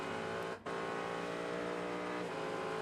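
Loud, sustained engine roar of race cars at high speed on the track during a 2022 WeatherTech SportsCar Championship race at CTMP, a dense harmonic whine with a brief dip as one car shifts or passes, continuing steadily without any voices.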